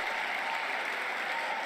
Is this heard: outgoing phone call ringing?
no